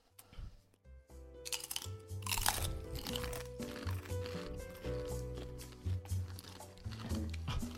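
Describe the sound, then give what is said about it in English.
Loud crunching and chewing of a crisp spicy chip, with repeated brittle bites and munching sounds coming in an uneven rhythm, over a faint steady hum in the background. “And so, I feel like now that we've all had one chip each, we shall now do a karaoke.”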